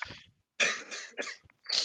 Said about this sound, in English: Sorry, I had a cough